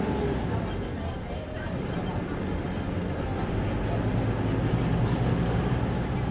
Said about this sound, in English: Here I am on 31st Street about to get onto the new bus.